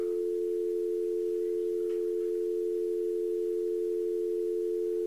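telephone dial tone

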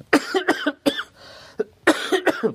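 cough

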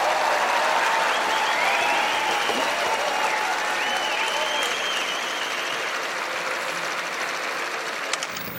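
applause sound effect

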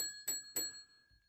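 bell ringing

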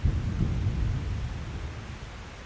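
rain

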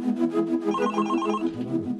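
phone ringing

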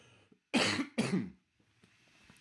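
cough

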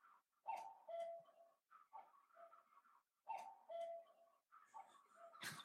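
cuckoo clock calling

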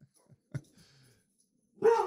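dogs barking

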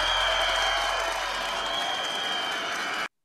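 crowd cheering and applauding

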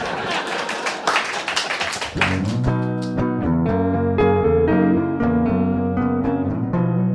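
audience clapping

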